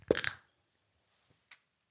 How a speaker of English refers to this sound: That's weird. It's letting off like a fizz. You hear that? Yeah, there's pressure. There's pressure.